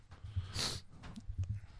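human body sound, heavy coughing

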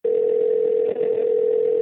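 signal or alarm, telephone dial tone

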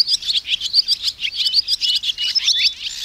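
bird, swallows twittering

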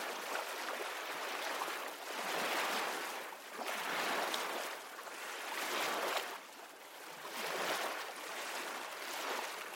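nature, ocean waves

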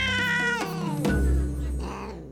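animal, cat meowing

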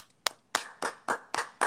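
crowd, round of applause

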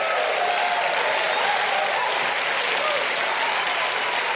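crowd, studio audience applause

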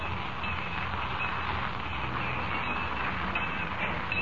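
vehicle, train

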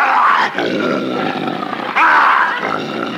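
animal, lion roaring

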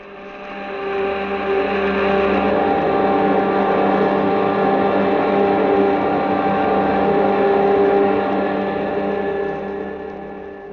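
sound effect, spaceship jet dynamos running

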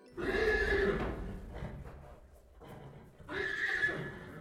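animal, horse neighing

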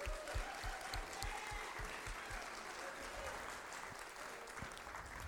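crowd, audience applause

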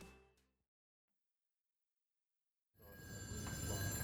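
household object, office telephone ringing

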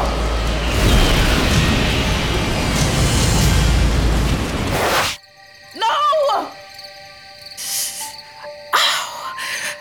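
sound effect, plane crash explosion

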